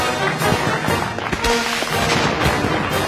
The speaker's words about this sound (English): Welcome to the Rockefeller Center Salute to Fireworks. Now, without further ado, 3 hours of fireworks.